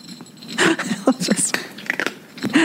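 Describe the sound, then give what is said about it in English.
Small, crisp crunches come in irregular bursts as a cat chews dry kibble, with brief sharp bites and gaps between them, fairly loud and clear with no talking over it. “Cat eating kibble. This one's my favorite sound.”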